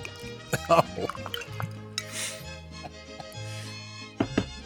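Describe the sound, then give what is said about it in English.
Tequila glugs and splashes as it is poured into a small highball glass in a couple of short bursts with sharp clinks, while voices and other sounds carry on underneath. “That's a heavy pour. It sounded like it.”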